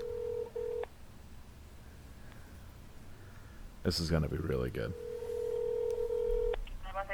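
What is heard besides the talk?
telephone dialing tones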